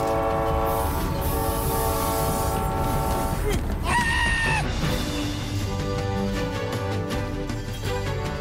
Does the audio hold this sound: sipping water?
no